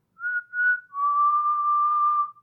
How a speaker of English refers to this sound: We do have a parrot in the room. There's a parrot right behind me.